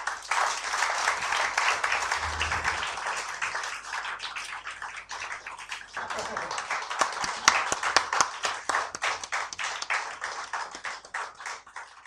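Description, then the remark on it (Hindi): Sustained applause from a sizable crowd at the release of the IndiaFacts Hindu Human Rights Report 2017 lasts about twelve seconds, dense and steady at first, then thinning into more distinct individual claps toward the end. “आप सभी की एक बार जोरदार तालियां।”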